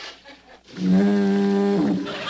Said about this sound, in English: Oh, what was that? Sounded like a foghorn.